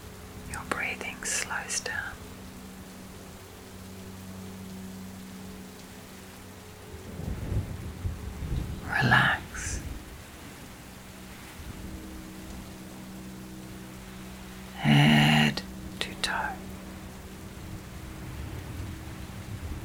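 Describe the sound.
Steady rain hisses throughout while low thunder rumbles and rolls through the middle. A few soft whispered voice fragments surface over the storm.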